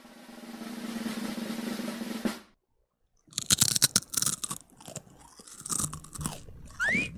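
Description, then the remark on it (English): A loud crunch of a tiny potato chip being bitten, followed by a flurry of sharp, crackling chews after a brief pause, with no one speaking. “I mean, it's a solid crunch.”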